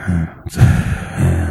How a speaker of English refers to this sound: Well, that should never have inspired all this awkward, terrible breathing. Right in your ear. Like a bag.